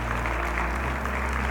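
A church audience applauds together in praise of the Lord, a steady wash of many hands clapping at once, fairly loud and sustained with no voices standing out.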